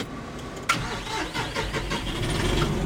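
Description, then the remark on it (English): A John Deere 5075E tractor engine cranks and catches with a sudden loud burst, then settles into a steady rumbling idle with no one talking. “John climbs into the cab of a John Deere 5075E. When I start up”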